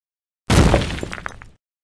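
A glass shattering sound effect: one loud crash with a heavy low impact, followed by about a second of bright, tinkling shards that scatter and fade quickly. No voices.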